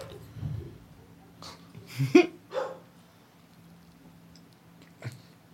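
A dog scrambles around wildly with a few scattered thuds and bumps, sounding like it is hitting into a wall, plus brief yelping, bark-like noises clustered together, then a lone knock after a quiet pause.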